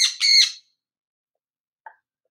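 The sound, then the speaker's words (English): Two harsh, raspy parrot squawks in quick succession, loud, followed after a pause by a faint short chirp, with no talking. “You're a wise old parrot.”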